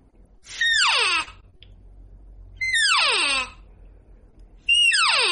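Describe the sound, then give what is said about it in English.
Three loud, nasal cow calls blown on a game call the way a less proficient hunter calls, each a high mew sliding steeply down in pitch, under a second long and evenly spaced about two seconds apart, with the same sound and timing each time, with no talking. “Is they'll grab a cow call.”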